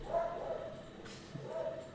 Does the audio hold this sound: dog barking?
yes